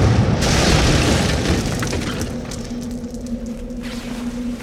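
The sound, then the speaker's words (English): A heavy, booming crash erupts at once as Santa smashes into one building and out the other side, coming to rest on the ground; a loud low-heavy impact with crumbling noise slowly fades into a rumbling tail, with a steady low hum emerging underneath toward the end. “I stood still as Santa smashed into one building and out the other side before he came to rest on the ground beneath.”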